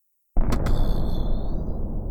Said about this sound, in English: a shuddering explosion from within. Did it connect?